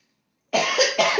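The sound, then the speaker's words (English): A loud cough starts abruptly after a brief silence, followed by two more harsh bursts in quick succession, rough and throaty with no talking. “All right, y'all, I'm coughing now, so let's wrap this up.”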